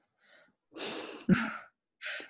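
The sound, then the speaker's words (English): A single sneeze: a couple of gasping inhales build up, then a sharp explosive burst, followed by a short breath afterward. No one speaks. “Wait, I'm going to sneeze.”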